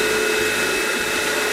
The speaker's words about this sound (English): Okay, these are all nicely sanded. It takes longer than you think it will. Now we're gonna hit it with a vacuum and the tack cloth.